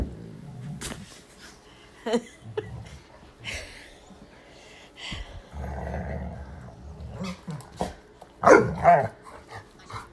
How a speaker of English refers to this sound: You can make your cute little puppy noises, but you don't need to bark.